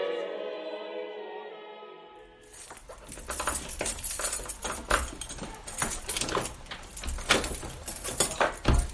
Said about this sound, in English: So don't record me locking that door. It's embarrassing how difficult it is.